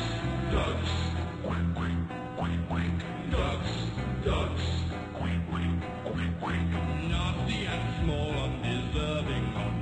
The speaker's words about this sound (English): Ducks, ducks. What are they doing at night in the pond? Ducks, ducks. Quack, quack, quack, quack. Think of them waddling about in the dark. Ducks, ducks.